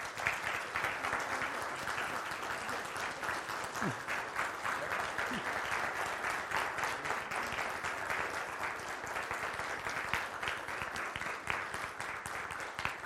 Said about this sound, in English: Can we give these men another round of applause?